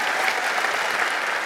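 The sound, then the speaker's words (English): A crowd applauds steadily for a pastor who has just finished preaching every verse of the New Testament, the dense clatter of many hands clapping at once at an even loudness with no voices on top. “Can we applaud that?”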